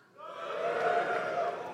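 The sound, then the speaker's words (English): A crowd of cisgender men in an audience cheers together on request, a loud sustained roar of voices that swells quickly and holds steady for under two seconds. “That was a confident cheer, wasn't it?”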